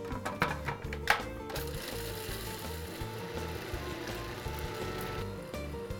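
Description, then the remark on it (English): A food processor motor whirs steadily for the whole stretch, processing chopped garlic cloves, kosher salt and hot water into a paste. It is a dense mechanical drone with a faint rattling texture and a few brief clicks near the start. No one speaks. “Now I'll add 1 teaspoon of kosher salt, 2 teaspoons of hot water, and we'll process this down into a paste.”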